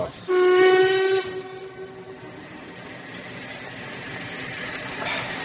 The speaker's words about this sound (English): Weren't we supposed to get that train? Was that the London train?